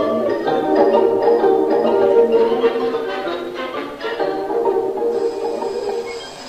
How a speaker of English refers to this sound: Daisy's alarm's gone off too soon